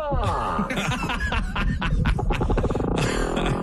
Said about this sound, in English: Like a groaning toilet cam. Yeah. It's a male humpback whale singing his heart out for a mate. Ah. Now, I love that noise because that's the noise any male makes pleading for sex.